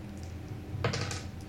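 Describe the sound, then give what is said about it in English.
Dice clatter across a hard floor in a quick burst of sharp clicks and rattles that settle within about half a second, following a quiet moment; dice thrown on the floor for a fight roll in a game. “And I'm just gonna swing my goddamn dice on the floor again.”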